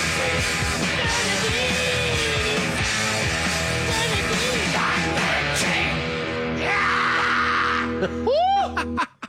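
A loud, dense rock song builds to a piercing, sustained scream from the singer near the end, sliding in pitch before the music cuts off abruptly.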